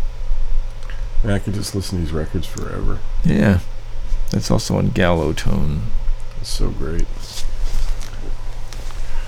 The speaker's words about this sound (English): Should point out to our listeners here that if you hear a little distortion in the background, we have a fan going. But you know, it's like 93 degrees here, so cut us some slack. No air conditioner.